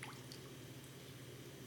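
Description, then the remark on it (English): Quiet dripping of warm water from a hand, a few soft drops and light trickling falling over a low steady background hum, with no one speaking. “Do you want to feel the water?”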